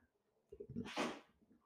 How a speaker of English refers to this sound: And my dog sneezes. And my dog sneezes again.